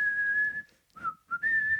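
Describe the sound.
A man whistles a bright, cheerful tune with a steady marching feel, holding clear high notes, briefly pausing and dipping lower before picking the melody back up.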